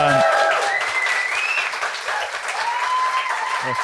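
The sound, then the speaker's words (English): Loud, sustained audience applause for Jordan Gray fills the whole stretch, a dense steady patter of many hands clapping, with a few faint voices and cheers rising over it. “Lots of applause for you.”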